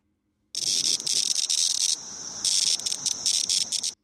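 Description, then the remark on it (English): A periodical cicada's distress call: a loud, harsh buzzing rasp that pulses in stuttering bursts for about three seconds, with a brief dip midway, with no voices. “So I played for you the courting call of the male periodical cicada that's found in our area. And this is the distress call.”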